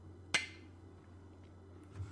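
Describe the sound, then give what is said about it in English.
A single bright clink of glasses of a holiday drink touching in a toast, sharp, with a brief ringing tail that fades quickly into a quiet hum. “let's cheers. We have a holiday drink.”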